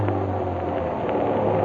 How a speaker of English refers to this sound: It's my bus with the red wheels.